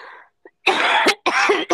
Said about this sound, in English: I have to cough again. I'm sorry. Okay, cough.